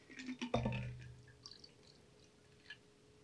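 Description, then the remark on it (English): A cocktail is strained and poured into a glass: a sharp clink against the glass, then a brief, quiet trickle of liquid with a few faint drips. No one speaks. “So I'm going to pour now. We do. So now you strain.”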